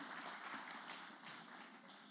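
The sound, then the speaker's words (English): An audience claps together in a steady, dense wash of applause that holds an even level for a couple of seconds, with no voices rising above it. “I want to put our hands together for these guys today.”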